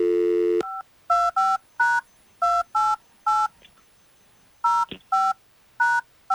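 telephone number being dialed

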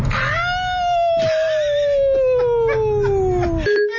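howl

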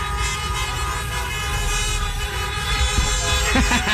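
car horns honking

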